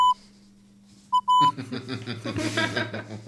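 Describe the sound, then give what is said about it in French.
A few steady, mid-pitched Morse code beeps, one short blip, then a short and a longer tone, give way to a loud, dense, rough wash of sound that fills the rest. “Et afin que tout soit plus clair pour vous, je vous ai enregistré mon portrait sur les morses que voici.”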